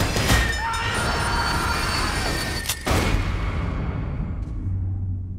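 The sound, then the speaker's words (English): A train, the Orient Express in Murder on the Orient Express, rolls steadily along the tracks with a continuous loud rumble, faint squealing tones and a few sharp clanks from the wheels, gradually thinning out toward the end. “The murderer is on the train with us now, and every one of you is a suspect.”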